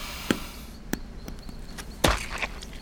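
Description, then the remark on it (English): Several heavy, wet-sounding stomps crushing apples, irregularly spaced, with one especially loud squelching impact near the end and faint smaller thuds between. No one speaks. “You can't just stomp on all the apples.”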